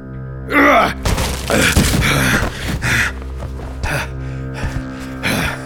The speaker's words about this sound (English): What are you doing here? Did you just break my door down?